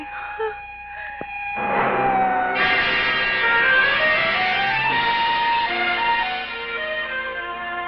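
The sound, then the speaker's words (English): An ambulance siren wails in steady rising and falling sweeps, starting faintly and swelling loud after a couple of seconds, with a low vehicle rumble underneath. “Take it easy. It's only the ambulance.”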